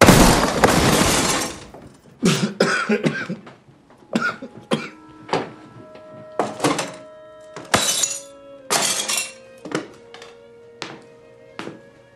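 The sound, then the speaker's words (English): Bigfoot smashes on a door: a loud crash opens, followed by about a dozen irregular heavy bangs, some leaving a brief metallic ring. The blows are forceful, with no voices. “Bigfoot and he smashed on my door.”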